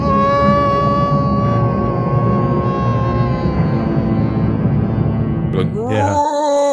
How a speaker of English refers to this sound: One of those great Donald Sutherland screams. He's got like at the end of Invasion of the Body Snatchers.